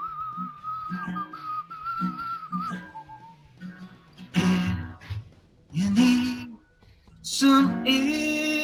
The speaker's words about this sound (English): Oh, that was beautiful. I was whistling. I hope it didn't, like, bleed in. I don't know how you knew there was a whistle track that was missing, but.